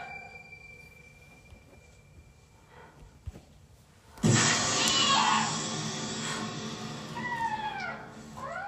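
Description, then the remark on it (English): A kitten meows twice, drawn-out and wavering, over a loud rushing noise that starts abruptly partway through after a quieter opening. “Kitten, I hear you, but I don't see you.”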